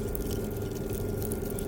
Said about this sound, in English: It sounds like 1,000 tiny toddlers eating apples like half a mile away. Elfie, that is beautiful. but they were worms. They were worms eating polystyrene.